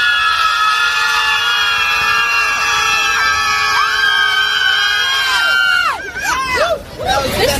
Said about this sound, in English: but before I published it, we actually saw protesters screaming just like in the video because for some reason the left wing thinks screaming incoherently like psychopaths is something that makes you seem like you're holding a reasonable position.